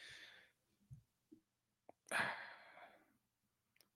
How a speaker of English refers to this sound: Worst time for a cough right there. It is all good.